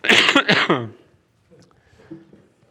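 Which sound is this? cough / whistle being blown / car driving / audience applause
cough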